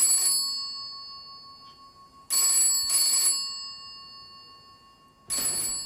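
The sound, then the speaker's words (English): An old-style telephone bell rings in loud, metallic bursts: one at the start, a double ring in the middle, and another near the end, with no voices. “Dovetails in with that moment when that phone call was made, and obviously I take a position on who made that call, if that makes sense.”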